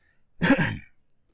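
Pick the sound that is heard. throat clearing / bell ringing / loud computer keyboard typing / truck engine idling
throat clearing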